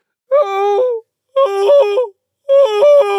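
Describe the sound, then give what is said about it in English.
The Queen lets out three loud, shrill screams in a row as her finger bleeds, each under a second with short gaps, sustained and piercing like a steam engine whistle, the pitch stepping up and down. “Her screams were so exactly like the whistle of a steam engine that Alice had to hold both her hands over her ears.”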